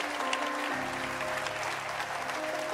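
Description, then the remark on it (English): A crowd claps steadily, a dense wash of many overlapping hand claps with a faint low hum underneath, sustained at an even level throughout. “Clap your hands.”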